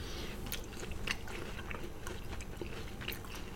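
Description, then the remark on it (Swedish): Crunchy conventional (non-organic) corn being bitten and chewed, with a series of crisp, crackling bites and wet chewing repeating steadily over a low, constant background rumble. “Fin crunch.”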